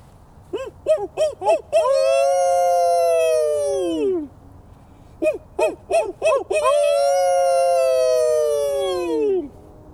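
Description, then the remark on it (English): A coyote gives a few quick, sharp yips that rise into a long, wavering howl sliding downward in pitch. The same pattern repeats a second time, loud and clear with no talking. “And when I hear the coyote wailing to the yellow dawn”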